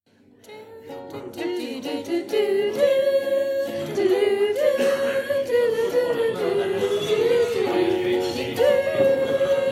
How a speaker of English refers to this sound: You'll hear a magic noise when he's about to speak, because as we all know, Wales is magic.